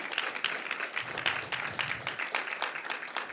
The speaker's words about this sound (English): Yeah, if you're watching, we're applauding you.